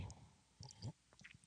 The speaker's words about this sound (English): Let me take a sip.